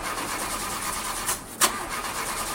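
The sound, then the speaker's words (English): A car engine cranks steadily with a rapid, rhythmic churning that never catches, fairly loud, with a couple of sharp clicks near the end and no voices. “Car not starting? Yeah, it just started doing this, and I don't know who to trust to take care of it.”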